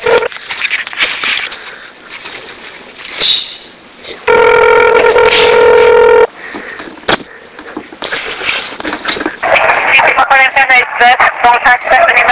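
A single loud electronic telephone ring lasting about two seconds, steady and buzzy, with muffled chatter and line noise before and after it, as a prank call is placed to a Panda Express restaurant.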